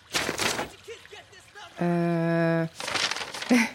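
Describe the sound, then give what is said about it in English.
Loud crinkling of a blank sheet of paper in two rustling bursts, one at the start and one at the end, separated by faint vocal sounds and a steady sustained tone. “this is a blank sheet of paper.”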